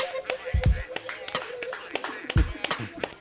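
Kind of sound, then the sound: crowd, two people clapping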